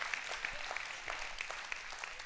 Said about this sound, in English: Can you give the Lord a hand clap of praise because you're thankful for the Spirit? You're thankful for the Spirit.